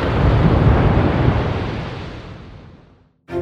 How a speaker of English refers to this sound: Because out of nowhere, a gut-wrenching rip of thunder pounded the ship a heartbeat before the sea became a watery mountain range.